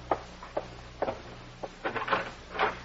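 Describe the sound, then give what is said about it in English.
A front door being opened: a series of sharp wooden clicks and knocks as the latch and handle are worked, followed by a few softer scraping bumps, with no voices. “But you had better answer the door.”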